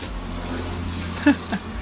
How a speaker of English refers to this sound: Yeah, just so you guys can hear it, but we hear this, like, every 5 minutes. Every 5 minutes. And... The car passes by. And I'm always, and you know, they always pass by like super fast too.